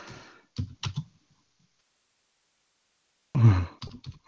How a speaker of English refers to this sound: Sorry, I'm just typing in what the video I posted up was about.